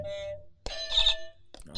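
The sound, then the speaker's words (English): A retro video game jump sound effect from Donkey Kong, Mario jumping over a barrel: a sharp attack followed by bright, buzzy electronic tones with rich harmonics and a short chirpy burst at the end, with no voices. “That's Mario jumping over a barrel from Donkey Kong.”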